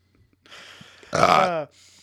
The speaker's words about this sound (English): So take that burp out.